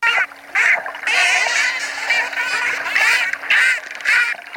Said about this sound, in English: Burst pulses are packets of clicks spaced tightly together.